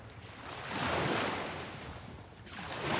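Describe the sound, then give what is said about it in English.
Calm water washing gently, with a soft hiss that swells and recedes twice like small waves, steady, with no voices. “Oh, that'll be perfect because water makes so many different kinds of noises. Sometimes it can be maybe like calm and relaxing.”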